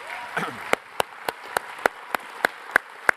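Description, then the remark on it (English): A standing audience claps in a steady, even rhythm, with about nine sharp beats over a busy wash of crowd noise, giving a round of applause. Faint voices are mixed in near the start. “All right, everybody stand up and just give them a huge round of applause because that's awesome.”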